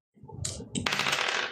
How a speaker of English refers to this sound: So let's roll the dice again.